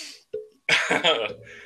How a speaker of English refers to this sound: I do apologize for my cough, ladies and gentlemen, by the way. I have asthma.